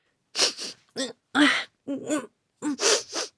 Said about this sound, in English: I'd better blow my nose in a tissue and throw it in the trash.